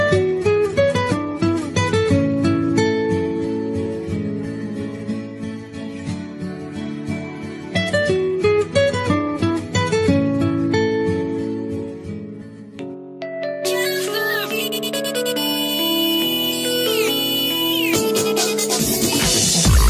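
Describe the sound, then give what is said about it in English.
A bright, busy electronic mobile phone ringtone plays on its own, dense synthesized melody and bass for about thirteen seconds before switching to a higher, glassier tune that carries on steadily to the end. “They kept getting more powerful, and eventually, we got to the point where the ringtones were sounding pretty snazzy.”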